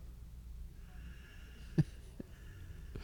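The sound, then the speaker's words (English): Silence broken by one sharp, nasal snore, followed by a couple of fainter snorts, with no talking. “Do we want to just ride this out? The snoring?”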